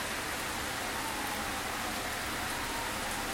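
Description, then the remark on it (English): Steady rain falls in a continuous, even hiss, with dense patter spread across a broad wash of noise and no voices. “Oh, how I love the rain.”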